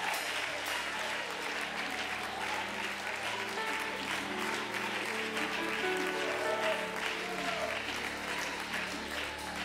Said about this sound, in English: Let's give it one more hand clap of praise tonight.